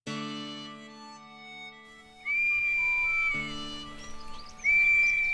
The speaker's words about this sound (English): She would swear that she'd rung the bell or she had an Acme police whistle. And that was the whistle to bring me in from the fields.